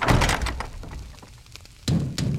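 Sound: knocking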